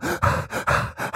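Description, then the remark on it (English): A voice imitates the heavy panting of a film character running through a store: about six quick, loud, breathy in-and-out gasps in a steady rhythm, with no other sound. “It's like you can hear him breathing really hard, but it doesn't sound like, it sounds like he's in a booth going.”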